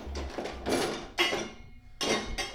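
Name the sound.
dishes clinking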